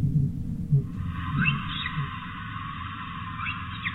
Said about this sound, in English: And finally the whistle of the odontocetes, the orcas, moving around quite a bit in the south.